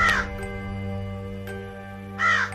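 A sound effect of two harsh crow caws, one at the start and one at the end, loud, separated by a quiet stretch with a steady low hum underneath.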